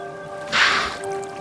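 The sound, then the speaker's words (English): A single sharp, breathy whoosh of a wild bottlenose dolphin exhaling through its blowhole as it surfaces, over a steady low mechanical hum. “It's a wild dolphin, a bottlenose.”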